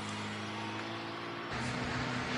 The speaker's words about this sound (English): What is up with the traffic today? It's always, every day, this intersection's always crowded. I hate pulling out of here.